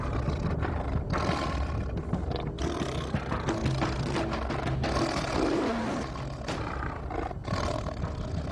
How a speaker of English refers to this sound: As … and his wife watched in terror, they felt the physical effects of the tiger's roar. It's like it's coming right through you. It feels like the sound is actually penetrating you. It's so forceful.